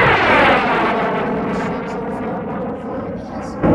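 A loud fighter jet engine roar sweeps past, its whining pitch sliding downward as the rumble holds steady, then a brief surge of noise at the very end.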